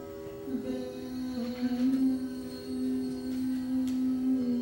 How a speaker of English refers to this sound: So pure, it's so much in tune with the drone on the tampura. It couldn't possibly be anywhere else in the scale. There's the drone.